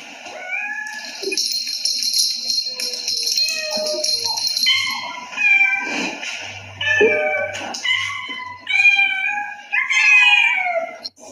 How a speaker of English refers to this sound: And while you're here, I have a very interesting recording of some cats who don't speak English. So if you could translate for me what they're saying. I'll play it for you now.